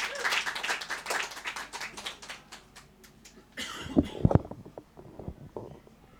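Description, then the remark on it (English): An audience claps in a dense, steady patter of applause welcoming a slam poet, fading after a few seconds, followed by scattered thumps and rustling. “Round of applause.”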